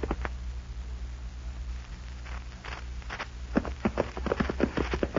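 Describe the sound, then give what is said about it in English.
Horses' hooves clip-clop in a steady, uneven patter over a low background hum, growing louder and busier toward the end as a group of riders approach after dark, a short distance from the small cattle town of Buffalo Springs. No one speaks. “Foy and the boys are riding into an experience right now”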